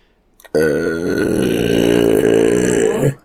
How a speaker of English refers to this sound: Do you know what? You belched then, and I let out a really fucking good fart then as well.